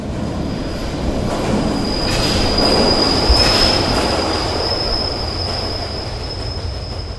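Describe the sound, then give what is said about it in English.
A London Underground train rumbles steadily past a railway platform, its wheels letting out a thin, sustained metallic squeal over the loud, constant roar of the carriages, with no voices. “Kelly pushed most of his victims underneath the trains when they got to the edge of the railway platform”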